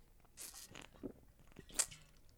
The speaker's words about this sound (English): Oh, it's a water drinking time. Hold on.